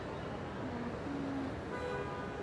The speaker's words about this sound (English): Okay, as you can hear, we are on the city streets of New York. It is some sound, isn't it? You can hear the cars and the trucks and the stuff.